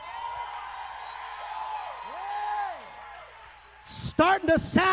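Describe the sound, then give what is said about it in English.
A steady, sustained musical drone plays quietly, then near the end an audience suddenly erupts into loud, overlapping shouts and whooping cheers that carry through the final second. “Now it's your turn to lift up your voice.”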